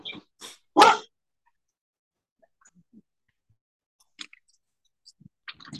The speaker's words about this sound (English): Sorry, I have my dog absolutely going crazy over here. One second.